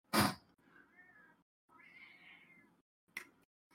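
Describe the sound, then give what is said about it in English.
A cat lets out two drawn-out meows in quick succession, fairly quiet, framed by a couple of short soft breathy bursts with no talking. “Meanwhile, the noxious cat appears. Is the mic picking him up? Yep, a little bit.”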